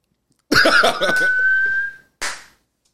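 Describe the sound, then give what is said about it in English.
A person makes a few breathy, sputtering vocal noises, then holds a single steady whistled note for under a second, followed by a short, sharp exhale. Fairly loud. “You can't suck and blow at the same time. Unless you whistle.”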